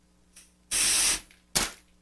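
Loud rush of air blowing colored water out the top of a manometer after a valve was turned on instead of off, a half-second hissing burst, then a second shorter gush, with a faint puff just before; no one talks.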